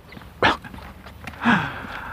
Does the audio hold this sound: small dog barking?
yes